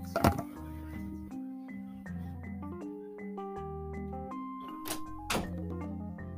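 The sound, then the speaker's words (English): A door thuds shut, with a sharp knock early on and two more bumps near the end, over steady electronic music with a deep bass line and stepping synth tones. “Hold on, let me close this door.”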